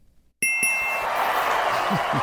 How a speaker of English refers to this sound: That's the bell.